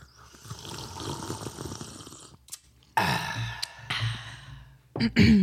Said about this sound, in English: We're sipping tea. I'm going to join. I could only sip for so long, guys.